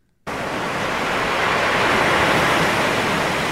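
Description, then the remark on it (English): After a brief silence, a steady, loud rush of ocean surf starts abruptly and continues without letup, a dense, even wash of waves with no voices. “about how I was trying to fall asleep to ocean sounds.”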